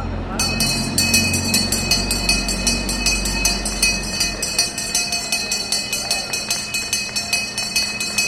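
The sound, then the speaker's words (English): A bell is rung over and over to open a Sunday market under the FDR Drive in Lower Manhattan, New York, in a quick, steady rhythm, its bright, high metallic clangs ringing on, with a low rumble and murmuring in the background during the first half. “It's open Sundays through December, and I was told every good market opens with the sound of a bell.”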